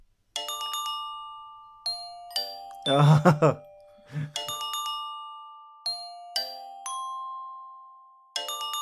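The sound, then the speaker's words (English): The theme from the Western film The Good, the Bad, and the Ugly, played as ringing, bell-like tones in short repeated phrases, each note decaying, broken up midway by a brief pair of loud wailing vocal-like bursts. “Oh, yeah, it's The Good, the Bad, and the Ugly.”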